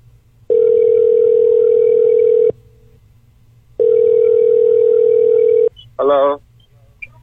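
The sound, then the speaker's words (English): Two long, steady low-pitched ringback tones, each lasting about two seconds with a pause between, followed by a brief loud voice as someone picks up the line. “Let's see if they, let's see how long we can keep him on. You got the timer? If they answer.”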